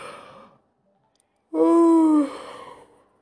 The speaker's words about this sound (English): Sorry, I'm yawning.